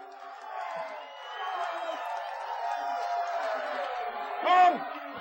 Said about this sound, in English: Listen to this crowd, Boyd.